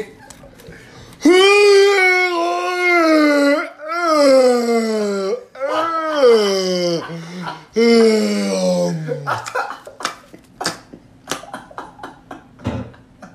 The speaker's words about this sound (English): That's her every fucking yawn 10 times a day.